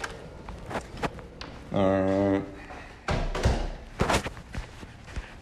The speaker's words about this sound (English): All right, I'm gonna open the door.